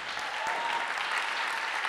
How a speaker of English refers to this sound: So come on, let's clap. It's good.